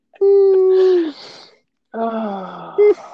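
A dog lets out a long, steady, loud howl, then after a short pause gives a lower, drawn-out whimpering moan that rises into a brief high whine at the end.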